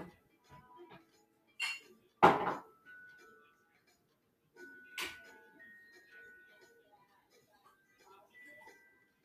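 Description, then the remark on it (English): Glassware and dishes clink as someone at home gets a glass of water: a few sharp knocks, one louder crack around the middle, with brief ringing tones trailing after each, amid quiet handling sounds. “I'm going to go get a glass of water.”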